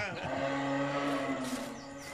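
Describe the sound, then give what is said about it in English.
A deer buck gives a single drawn-out, low, moaning bellow, steady in pitch with rich harmonics, lasting about two seconds and fairly loud, with no talking over it. “That's not Mario. That's a deer. Sounds like a buck.”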